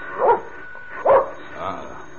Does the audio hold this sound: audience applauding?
no